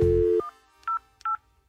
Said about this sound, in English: So I get in touch with the crew at Huggies headquarters to get some answers. And stop the phone ringing. That isn't necessary because I emailed them.